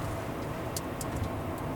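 A heavy truck loaded with trees rumbles steadily along the road, moving fast, a continuous low engine and tire drone with a few faint rattling clicks over the top as leaves and wood chips fly off it.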